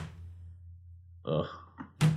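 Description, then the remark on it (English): A voice imitates a sleeping man's head falling left and banging against a window, which happened every 40 seconds: a low hum, then a short burst of throaty mouth sounds ending in a sharper thunk-like hit. “And for the entire 2 hours he was sat in front of me falling asleep, his head kept falling left and banging on the window. Every 40 seconds. So every 40 seconds it'd go.”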